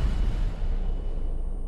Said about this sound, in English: See that explosion looked good. That explosion looked good. I want to see the boom again. I want to go. It's a little bit after he says boom. It's just awful, awful CGI.